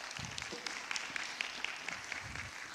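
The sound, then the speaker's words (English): A crowd applauds steadily, a dense wash of many hands clapping at once with a few sharper individual claps standing out, moderately loud and continuous with no voices. “And let's go ahead and give them a little bit of applause and encouragement.”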